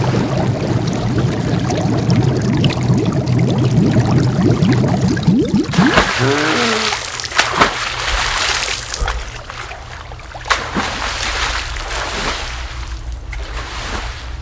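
Rushing, churning water gives way to a sudden plunge, after which the sound turns muffled and submerged, with bubbling gurgles and scattered soft pops continuing underneath.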